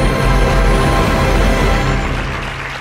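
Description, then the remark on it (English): A crowd claps in a dense, steady wash of applause that holds loud for a couple of seconds, then begins to thin and fade toward the end. “Don't clap for that.”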